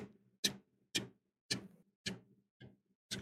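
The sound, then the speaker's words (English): Faint, evenly spaced ticking from a handheld detector, a device for locating mechanical creatures, its trigger squeezed during a quick scan: about six sharp clicks at a steady slow pace, with quiet gaps between them and no voices. “You pull it out, you've squeezed the trigger on it, and the little umbrella barely ticks.”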